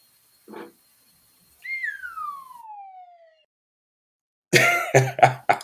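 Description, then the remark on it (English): A short whistle sound effect slides steadily downward in pitch over about two seconds, preceded by a brief rough burst and followed by several loud, harsh cough-like bursts. “I always liked the little whistle sound.”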